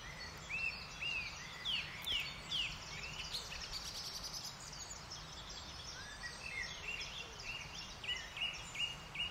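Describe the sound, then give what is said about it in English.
A male blackbird sings fluty, warbling phrases fairly close by, repeated in short bursts over a busy dawn chorus of other birds chirping and trilling in the background. “And there's another blackbird singing right here.”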